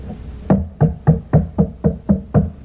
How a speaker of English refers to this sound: He's outside the door knocking.